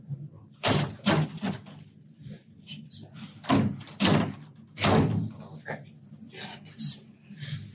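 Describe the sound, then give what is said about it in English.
Doors slam shut several times in quick succession, each a loud, sharp bang, with muffled voices and background noise carrying on underneath. “I've been told, by the way, that if we shut both doors, that...”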